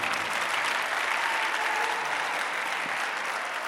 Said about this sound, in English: Listen, if you clap like this, nothing will happen.